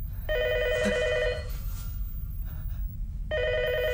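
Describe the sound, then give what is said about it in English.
A telephone in an apartment rings in two electronic trilling bursts separated by a pause, clear and fairly loud over a low, steady rumble, as the spirit Sadako crawls from the well shown on a TV. “The vengeful spirit of Sadako crawls from the well, and the phone rings.”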